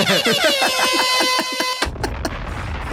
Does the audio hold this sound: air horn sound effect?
yes